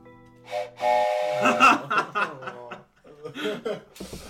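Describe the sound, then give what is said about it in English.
A train whistle gives the final call before the train departs, blowing a steady, sustained tone near the start, followed by a few seconds of choppy, chuckle-like bursts and rustling. “It's the final call for the train. It's time for it to head out, and you feel it start to move beneath your feet.”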